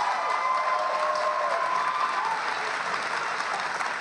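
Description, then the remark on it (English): A Fox News studio audience applauds in a dense, steady wash of clapping, with some cheering and whoops mixed in, holding at an even, loud level for about four seconds. “Fox News viewers are hearing a crowd of people on their network”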